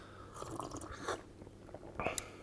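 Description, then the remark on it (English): Quiet sipping of hot fruit tea: a few short slurps and wet mouth sounds spaced irregularly, with a louder slurp near the end and no talking. “But as I continue to sip it, it's coating my mouth in that kind of like...”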